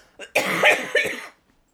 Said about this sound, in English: I got a little cayenne in the throat. That's why I'm coughing, though.